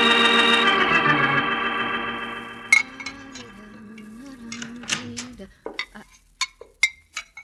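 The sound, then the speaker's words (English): Dishes being washed in a cafe kitchen, with plates and cutlery clinking in scattered, irregular knocks that grow sharper and more distinct toward the end, after a steady humming tone fades out. “keep on washing your dishes.”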